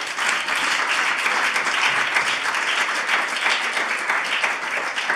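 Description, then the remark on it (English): Steady audience applause for two guests as they try to get their tech working, a dense wash of many hands clapping at an even loudness with no breaks and no talking over it. “We can give them a round of applause while they try and press some buttons.”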